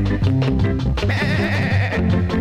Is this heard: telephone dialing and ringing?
no